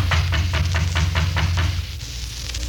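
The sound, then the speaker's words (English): A series of about eight soft, evenly spaced taps on a wooden door, quick and steady, over a low background hum, then a brief quiet stretch. No one speaks. “I reckon it won't hurt nothing to tap on the door sort of gentle.”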